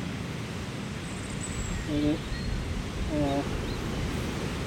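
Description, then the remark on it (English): Steady, broad rushing of wind outdoors fills the whole recording, with a couple of brief, faint voice fragments briefly rising above it. “Yeah, well, it's a little bit windy out.”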